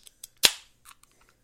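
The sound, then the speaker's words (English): A beer can, one of three beers to be drunk within five minutes and forty seconds, cracks open with one sharp, loud pop that trails off into a brief fizzing hiss, framed by a few small metallic clicks and a softer hiss afterward. No one speaks. “Just crack them open.”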